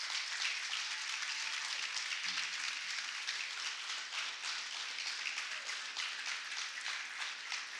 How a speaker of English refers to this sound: You guys can come up and you guys clap for them this special day.